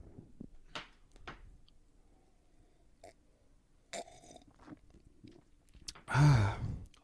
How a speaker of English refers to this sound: They tell us to drink this out of a tulip, which we're doing. Oh, so, yeah. Without further ado, gentlemen, goodness, let's tap these glasses and get a group gulp in on this.